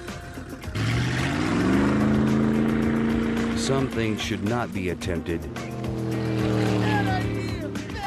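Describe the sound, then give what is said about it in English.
A motorboat engine towing a water skier holds a steady, low droning hum after a brief rise in pitch, loud and continuous, while a man speaks over it. “Or water ski.”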